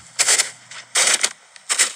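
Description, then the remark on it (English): Footsteps crunching through snow, three slow, heavy steps, each a broad, gritty crunch with a brief scrape, separated by short pauses. No voices. “That's someone walking in snow.”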